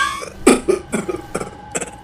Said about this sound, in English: Oh, darn! I hate these bloody coughing fits.